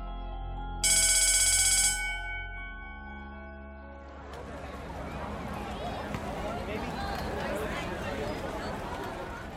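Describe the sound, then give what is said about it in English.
A school bell at Chester Prep High School rings loudly for about a second, a bright metallic ring signaling the end of the school day, then fades; moments later a crowd of giddy teens swells into lively, overlapping chatter. “The energy as the bell signaled our daily departure was both enthralling”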